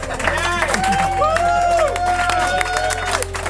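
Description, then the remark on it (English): Steady audience clapping at the end of a live adventure game show runs throughout, a dense patter of many hands mixed with crowd noise, with cheering voices and whoops rising over it. “Please put two and two together to make four hands clapping.”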